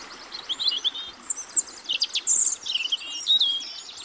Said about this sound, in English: So we've just been listening for a few minutes, and there's been robin, there's been blackbird in the background, wren just in the gorse here, linnet and redpoll and medipipit in the distance, and there's cuckoo